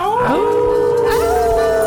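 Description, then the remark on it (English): Several human voices howl together like dogs, howling at the Moondog on the Moondog Show, a sustained rising and falling group howl that is loud and continuous for a couple of seconds. “And we all going to howl at the Moondog for the final time in September of 2023.”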